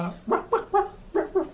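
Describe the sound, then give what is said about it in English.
Five short, bright dog barks yap in a quick, bouncy rhythm with a brief pause in the middle, each pitched like a musical note, barks sampled into the tune of the Silent Hill 2 video game ending song. “play the music with the dog bark.”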